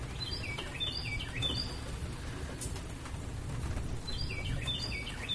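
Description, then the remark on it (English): A bird sings a repeated phrase of bright, descending whistled notes, in two bursts at the start and end, over a steady low outdoor rumble with no talking, heard from a porch. “Don't focus on the bird.”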